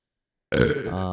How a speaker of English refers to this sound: He's just doing ASMR with their burping.